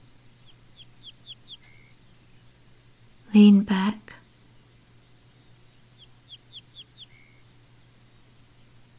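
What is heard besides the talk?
birds chirping outside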